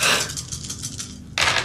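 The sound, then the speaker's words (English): A handful of dice clatter across a hard tabletop, a rattling burst of small knocks that fades, then another sharp scatter of clicks near the end. “So straight 4 dice.”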